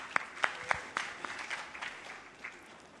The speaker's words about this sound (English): Let's clap